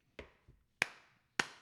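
Three sharp, bright hand claps land at an even, unhurried pace, a deliberate slow clap given in a park for a suggestion about hiring an architect, with brief gaps of quiet between each smack and no talking.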